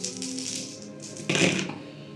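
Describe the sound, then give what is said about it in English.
Five search dice in a tabletop game clatter and rattle across a hard tabletop, a busy run of small clicks that swells into a louder tumble near the end before settling, with no voices. “do you want to roll 5 search dice”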